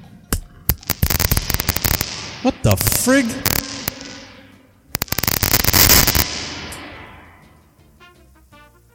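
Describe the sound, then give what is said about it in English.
Loud bursts of sharp crackling and popping, like fireworks, from a faulty Radio Shack reverb unit, come in two dense clusters with a long washy reverb tail fading out; a voice briefly exclaims between the bursts. “Yeah, it's like fireworks.”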